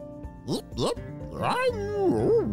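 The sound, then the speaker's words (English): A person's voice imitates a dog barking, voicing the pup Peppy in a story set on a sand beach: two quick woofs followed by a longer, sliding vocal yelp, fairly loud. “Barked Peppy as he took a big lick at Isaac's sandy face.”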